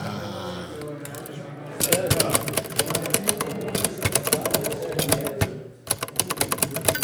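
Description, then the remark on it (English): A manual typewriter clatters away in rapid, uneven keystrokes, fairly loud, with a brief pause before the typing resumes; a low voice is heard briefly at the start. “Okay, so we're going to get the sound of a typewriter.”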